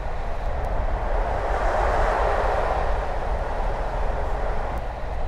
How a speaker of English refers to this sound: On the left-hand side of the train as we're travelling south, we've just passed Ludlow Racecourse. As you can hear, the train's built up quite ahead of speed. So things are progressing quite well at the current time.